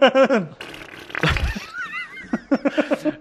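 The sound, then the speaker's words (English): A voice mimics a sputtering, misfiring engine like the Chitty Chitty Bang Bang car with valves not working right: a low raspberry-like blat, a few whistling squeaks, then a quick run of uneven popping chugs, like valves knocking out of time. “It's like the chitty chitty bang bang, just valves not working quite right noise.”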